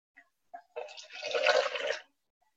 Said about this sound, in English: I went to the well to get my water, as usual.